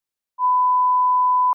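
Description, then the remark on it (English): A cell phone sounds a single steady electronic tone for an incoming call, clear and fairly loud, holding for about a second before cutting off abruptly, with silence around it and no voices. “I don't know what my phone over there is doing. Someone's calling you.”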